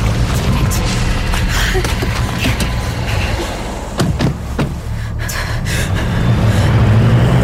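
A car engine rumbles steadily throughout while a few sharp thumps land in quick succession midway, like a car door being opened and slammed shut.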